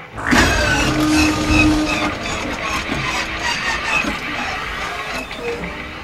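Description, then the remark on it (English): A car engine, its tank run down to empty and just refilled with gas poured from a bag, cranks and strains to start, a loud, continuous mechanical whirring and grinding that runs for several seconds without catching, with no voices over it. “My car's ready to start.”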